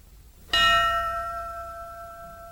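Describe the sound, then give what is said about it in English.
A single clear, loud strike of a memorial bell tolled for fallen firefighters at a memorial ceremony, its bright metallic tone ringing on and slowly fading after a moment of near silence. “There's not a dry eye in the place as the final bells are called for the fallen.”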